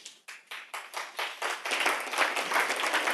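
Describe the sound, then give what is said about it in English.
Audience applause in Chicago for a bank executive as he is introduced, beginning as a few separate claps and quickly swelling into dense, steady clapping from many hands, staying fairly loud with no voices. “It's always nice when a banker gets a, you know, applause in this economy.”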